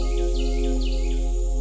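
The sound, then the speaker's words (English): Birds chirp in trees in a quick series of bright, repeating tweets, steady over a low constant background hum, with no one talking. “Birds chirped melodiously in the trees,”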